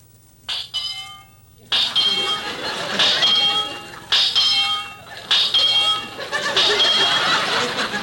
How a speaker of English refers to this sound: Well, that's certainly a peculiar heartbeat. Well, it has to beat like that. It's in my contract.